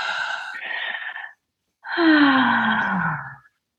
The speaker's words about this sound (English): I think we should all take a deep breath, listeners. Can we do that after three? Let's take a deep breath. Yeah. 1, 2, 3.